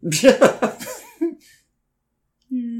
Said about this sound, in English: Okay, now turn your head and cough.